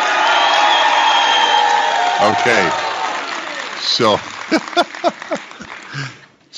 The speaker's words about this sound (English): All right, and now live applause.